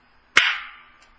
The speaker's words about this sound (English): Ask me what a Zen bitch slap is. This is a Zen bitch slap. This is it.